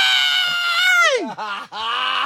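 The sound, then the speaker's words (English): A voice imitates a child screaming: a loud, high-pitched wail that holds, swoops downward, then breaks into two shorter cries, with no other sounds around it. “And that is the moment that child will scream to high heaven.”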